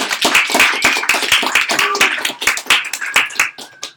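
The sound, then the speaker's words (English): A round of applause from a group for the team members, with steady, dense clapping that holds throughout, a few high whistle-like tones cutting through near the end. “So let's give a round of applause for all of the team members.”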